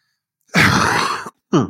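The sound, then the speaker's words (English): A single loud, explosive sneeze lasting under a second, with a breathy, voiced burst. A short voiced sound follows after a brief pause. “Bless you.”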